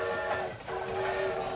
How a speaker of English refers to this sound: And even as the golden age of rail travel faded in the 20th century, there was still a KTM train plying the route from Tanjung Pagar up to Woodlands and over to Malaysia.